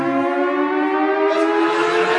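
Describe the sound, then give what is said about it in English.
A loud, sustained siren wails steadily at a golf tournament, halting play, its harmonic tone holding and swelling slightly, with no voices. “And I think there we must join them as the sirens have gone off.”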